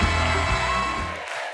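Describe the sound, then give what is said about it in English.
A studio audience at the Ed Sullivan Theater applauds and cheers David Letterman's entrance in a loud, dense wash of clapping and whoops that holds steady for over a second, then quickly thins out at the very end. “No stranger to an entrance with a warm welcome and booming applause.”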